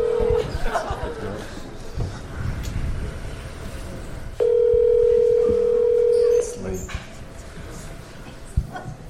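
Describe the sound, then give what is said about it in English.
A phone call is placed on speakerphone with a microphone held to the bottom of the phone: a steady ringing tone sounds briefly, pauses, then rings again for about two seconds, over murmuring voices and a few dog-like yelps. “Call him, put him on speaker, put the end of the microphone up to the bottom of the phone.”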